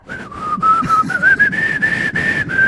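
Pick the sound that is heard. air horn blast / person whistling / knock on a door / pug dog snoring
person whistling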